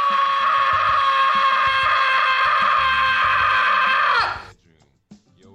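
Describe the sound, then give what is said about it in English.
A single long, loud human scream held steadily for about four seconds, then cut off abruptly, followed by near silence and a faint trailing sound. “Screaming Into the Void. Ah!”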